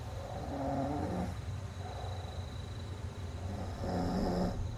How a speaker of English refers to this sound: I didn't realize he snores. Do you hear that? Turn it up, you'll hear it.